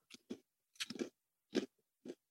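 Crunchy, chewy snack being eaten: about five separate bites and chews in irregular bursts, each crackling with sharp, bright crunch, quiet gaps between, no talking.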